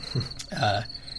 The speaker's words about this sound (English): Hence the crickets.